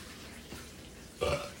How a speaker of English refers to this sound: The burp was louder.